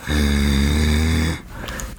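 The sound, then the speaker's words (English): A person imitates a growl with a single loud, low rumbling snarl that holds steady for over a second, then cuts off, leaving faint background noise. “Look, she's just sitting in the corner like that, just growling?”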